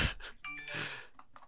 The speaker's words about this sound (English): Oh, I got a phone message. Oh. It's about shit that I technically should be doing.